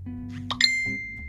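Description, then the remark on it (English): A single bright electronic ding from a phone ringing during a recording rings out clearly and lingers briefly over a low background hum, with no one speaking. “I don't even know why the phone can ring while you're... Imagine that. Phone continued to ring.”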